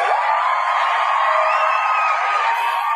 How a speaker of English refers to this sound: Anyway, well, I'm going to give myself a round of applause because I don't get to hear it enough on this show.